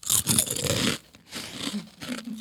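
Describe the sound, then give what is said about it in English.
Loud crunching of Doritos corn chips being bitten and chewed, a dense burst of brittle cracks in the first second, then quieter, scattered crunches as the chewing continues, with no talking. “So good. So crunchy.”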